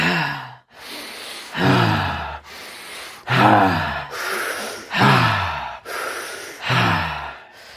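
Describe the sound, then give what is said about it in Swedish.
Loud deep breathing in a steady rhythm, roughly a dozen forceful inhales and exhales alternating, some exhales slightly voiced like sighs, with no talking; the final round of a guided deep-breathing exercise. “Andas djupa fina andetag.”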